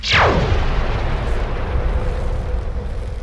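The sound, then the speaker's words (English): A loud blast from an energy cannon on a crane opens with a sharp descending sci-fi zap sweeping from high to low pitch, followed by a sustained roaring rumble that fills the rest of the sound without any voices. “Why the fuck does a crane have an energy cannon?”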